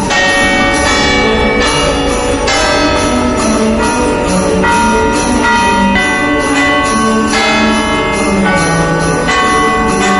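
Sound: church bells ringing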